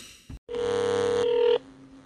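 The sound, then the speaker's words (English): A short blip, a brief pause, then a loud, steady electronic telephone tone that holds for about a second before cutting off, as a phone call is placed to Rocky Mountain ATV MC. No one speaks. “So we're going to go right ahead and we're going to give him a call right now.”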